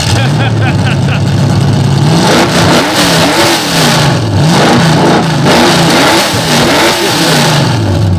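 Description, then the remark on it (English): A limited race car engine revs loudly in Murfreesboro, Tennessee, its pitch climbing and dropping in a series of quick throttle blips over a steady rumbling idle. “But before you leave, I'm going to let you fire this mother up.”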